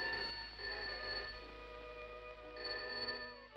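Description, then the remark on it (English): A telephone rings steadily and fairly loudly, its bright, sustained trilling tone pulsing in short bursts with no voices over it. “untangles himself from the clinch and angrily answers the phone to a Dr.”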